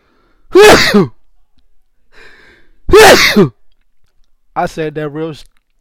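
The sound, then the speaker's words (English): Two loud sneezes about two seconds apart, each a sharp burst of breath, then a short voiced utterance. “I had to sneeze and rejuvenate myself. Did you hear the sneeze?”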